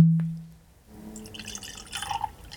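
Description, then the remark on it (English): A short glassy clunk rings out and fades, then Knob Creek 12-year-old, 100-proof bourbon whiskey trickles steadily into a glass, a soft, bubbling pour lasting a couple of seconds with no voices. “So let's go and get it poured.”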